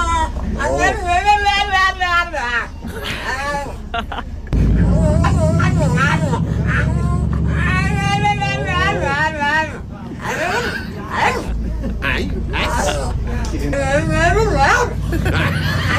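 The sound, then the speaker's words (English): A pug in a pushchair on a bus makes a long run of warbling, babbling vocal noises, rising and falling like mimicked human conversation, loud over a steady low rumble of vehicle engine noise. “So it's a pug in a pushchair, gets on a bus and just starts going blah, blah, blah.”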